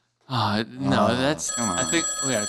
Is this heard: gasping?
no